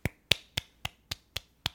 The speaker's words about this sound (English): It sounds like the cacophonous sound of one person clapping.